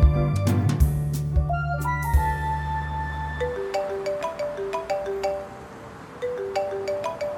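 A phone rings with a bright, melodic ringtone of stepped electronic notes that repeat steadily, heard over a busy, rumbling street background with a deep hum at the start, as an entrepreneur answers her phone on a busy street in the micro sitcom The Startup.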